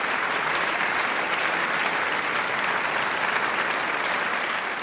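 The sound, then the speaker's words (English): A steady, dense applause sound effect of a large crowd fills the whole stretch, a continuous loud wash of clapping with no voices or pauses. “I'm sure that Felicity Jane's will have some applause playing right now as we speak.”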